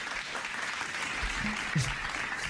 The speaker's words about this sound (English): Oh, gosh. Shouldn't have clapped.